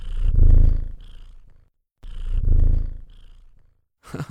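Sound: cat purring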